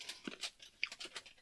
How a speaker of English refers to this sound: The deep fried shell that I'm chewing on is kind of grainy.